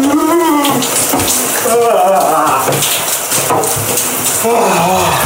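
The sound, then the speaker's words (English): Steady, loud shower water sprays while a man, who recorded himself during his morning routine, lets out strained gasps and wavering groans throughout as his warm shower is turned to cold at the end. “This is … in a cold shower, by the way. He recorded himself.”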